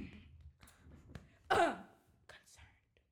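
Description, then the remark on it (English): A single loud, harsh throat clearing bursts out midway, surrounded by quieter rumbling breath and faint vocal noises. “Let me clear my throat.”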